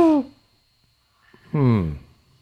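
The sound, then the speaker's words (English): A person imitates a big owl's hoot with their voice: a short hoot, a pause, then a longer, louder hoo that slides downward, clear with no other sounds. “You hear what sounds like a big owl.”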